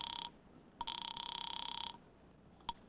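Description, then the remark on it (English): A telephone bell rings with a fast, buzzing trill, first a short burst, then a longer ring of about a second, followed by a brief final blip. It is clear and steady, with no talking. “There's a phone booth near the door.”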